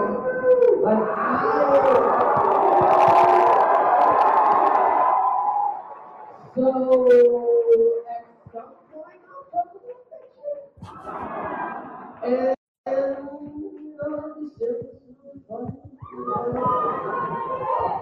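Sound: audience screaming and cheering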